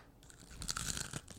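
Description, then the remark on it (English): A single crisp crunch of a barbecue-flavored potato chip being bitten, a dry crackling burst that fades within about a second, with no talking. “can you hit us with that final crunch?”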